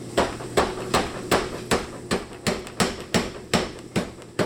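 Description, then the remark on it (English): A 100-pound Bradley upright strap power hammer pounds and flattens a hot railroad spike in a steady, fast rhythm, about two heavy strikes per second, each a sharp clanging thud over a constant low machine hum, loud. “It's a 100-pound Bradley upright strap hammer, and you can see that it just really forged that railroad spike down quite a bit, how much I flattened that out in one heat.”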